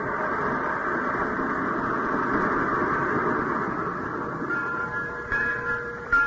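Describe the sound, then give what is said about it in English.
A train pulled by a locomotive rumbles steadily, a dense mechanical roar that holds throughout, with faint high metallic squeals creeping in toward the end. No voices are heard. “First train I ever saw with cobwebs on the locomotive.”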